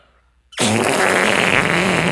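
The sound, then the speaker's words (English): A loud, sustained raspberry-like fart noise made with the mouth bursts in after a moment of near silence and buzzes steadily for over a second and a half, forceful. “who can make the funniest fart sound”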